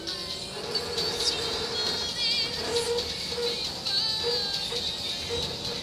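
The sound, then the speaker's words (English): Continuous rumble of a smoking train in motion, as heard from inside a carriage, with steady high-pitched whines and squeals riding over the dense low-frequency noise throughout. “This is a smoking train.”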